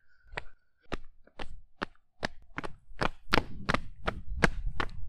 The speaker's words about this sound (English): I'm stepping loud because my mom thinks we should have more audio about us traveling.